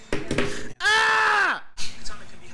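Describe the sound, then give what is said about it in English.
A person lets out a loud, sustained scream that holds steady and then drops in pitch as it trails off, framed by shorter vocal sounds before and after. “Do you have to scream like that?”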